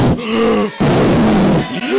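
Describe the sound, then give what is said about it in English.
A person vocally imitates snoring, making loud, drawn-out guttural groaning breaths, two long rasping snores with a short pause between. “Your snore, that's how your snore is.”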